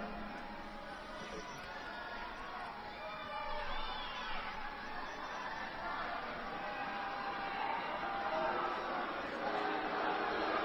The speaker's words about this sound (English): Booing. That's his supporters, dude. That yeah, that's his fervor, supporters.